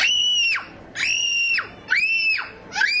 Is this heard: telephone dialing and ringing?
no